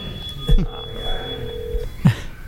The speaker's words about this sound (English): I'm calling them right now.